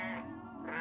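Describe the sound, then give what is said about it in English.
A cat lets out a single drawn-out meow, steady and fairly loud, with a slight rise in pitch near the end and no talking over it. “There's a lot of meowing going on.”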